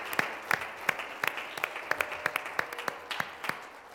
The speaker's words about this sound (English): darle un aplauso a nuestro Señor. Give a round of applause to the Lord Jesus.